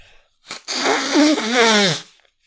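A short sniff, then a loud, sustained nose blow lasting over a second, a rough breathy rush with honking, wavering tones through it, ending abruptly. No one speaks.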